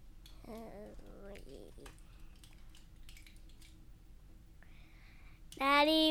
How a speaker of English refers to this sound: Daddy's clicking on his computer.